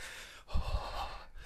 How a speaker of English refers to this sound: okay, let's start with some heavy breathing.